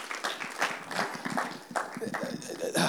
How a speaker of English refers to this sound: So I know your name is Simon, but I'm going to go ahead and you can clap that up. That's fine. Celebrate that.